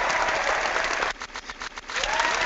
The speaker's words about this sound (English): I don't know what kind of clapping that is